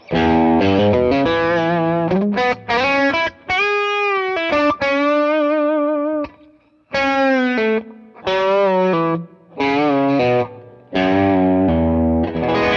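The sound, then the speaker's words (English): A distorted electric guitar, played through a Plexi Drive pedal, plays a quick country-style lick with bent notes and sustained tones, loud, with brief pauses between phrases and no talking. “You gotta use your bender. I'll call that country lick. A.”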